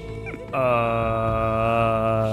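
A cat lets out a long, drawn-out meow that rises briefly and then holds a steady, strained tone for about two seconds, loud, with no talking over it.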